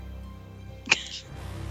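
A single sneeze bursts out sharply about halfway through and trails into a brief voiced tail, set against a low, steady background hum.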